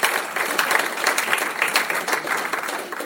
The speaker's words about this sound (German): Da kommt er. Dann auch noch Applaus für ihn.